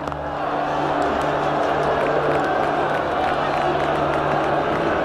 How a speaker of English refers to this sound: Well, there's a little bit of booing going on here, but I really don't think they know what's happening.